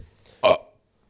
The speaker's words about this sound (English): Sorry. Yeah, I told you, I just burped like randomly.